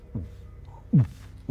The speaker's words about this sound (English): You can see now it's beginning to break apart, and there is this dull heartbeat, the sound.